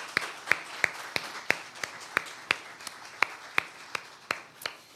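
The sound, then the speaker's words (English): Audience applause for a group making their way to their seats, with one pair of hands clapping in a steady, brisk rhythm over a softer wash of clapping. No one speaks. “All right, give these guys a hand as they make their way to their seats.”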